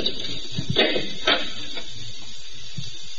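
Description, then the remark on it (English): A key given by the superintendent rattles and turns in the lock of an apartment door with a few sharp metallic clicks, followed by the soft scrape of the door opening. No one speaks. “The superintendent gave me the key.”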